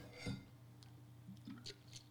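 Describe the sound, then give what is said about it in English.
Someone takes a quick swig of a drink: a soft gulp followed by faint wet mouth clicks and small swallowing sounds over a low, steady background hum. “After a little swig. A little swig. Just a little swig.”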